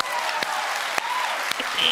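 A crowd claps steadily, producing a dense wash of applause that fills the whole moment at an even, moderately loud level, with a few sharper individual claps standing out.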